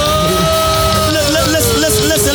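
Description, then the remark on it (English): Audience members shouting and calling out together during a speech, loud and continuous for a couple of seconds, with overlapping raised voices filling the space. “Those who are shouting, I already got the revelation.”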